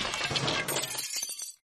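Glass smashes in one loud crash, followed by a brief scatter of tinkling shards that fades out within about a second and a half.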